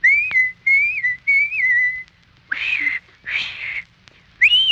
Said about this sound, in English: And anytime you need me, you know, just whistle like this.